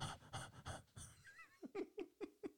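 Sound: imitated heavy breathing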